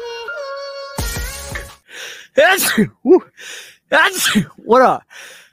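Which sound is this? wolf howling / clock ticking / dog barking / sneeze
sneeze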